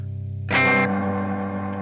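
A sustained, effects-laden guitar tone swells suddenly into a bright, dense wash of layered octaves from a 3-octave reverb algorithm mixing the original signal with plus one and minus one octaves, then lingers as a shimmering reverb tail, with no talking.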